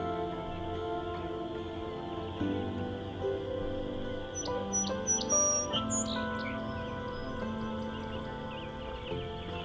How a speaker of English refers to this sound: Some American robins here too.